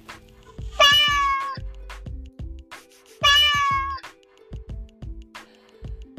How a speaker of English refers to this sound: guess what? I finally got 2 new kittens.